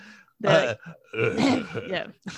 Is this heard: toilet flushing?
no